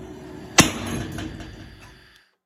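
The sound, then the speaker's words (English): A single sharp hammer strike on glass, a loud crack followed by a ringing, scattering tail that fades out over about a second and a half. No voices. “can I hit this with a hammer? And you thought. That's what we're here to find out. Also, this is glass.”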